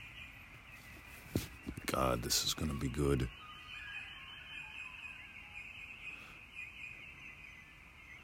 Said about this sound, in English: Alrighty, let's listen to the birds for just a moment.